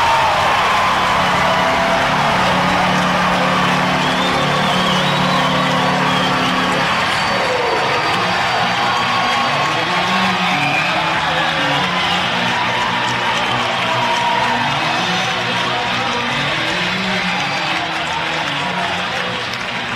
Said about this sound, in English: And now here come the Oswego State Lakers. The crowd is going bananas.